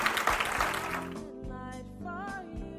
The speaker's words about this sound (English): Can somebody clap your hands like you know what I'm talking about?